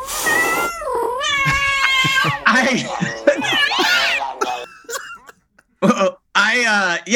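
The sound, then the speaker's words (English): A cat in heat yowls in long, wavering cries that rise and fall in pitch, loud, with a few brief pauses before the final drawn-out wails. “I'm a cat in heat, so that makes sense.”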